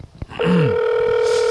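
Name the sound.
phone call ringing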